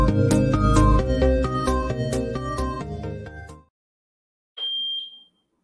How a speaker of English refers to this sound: That beep is everything. About that. I I was like, I can't wait to the day my beep go away. I ain't gonna say nothing. Y'all gonna wonder, like, damn, what that beep at? It's coming. I'm gonna miss it. I got the damn battery sitting right there.